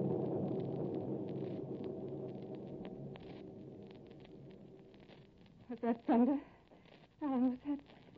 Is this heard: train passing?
no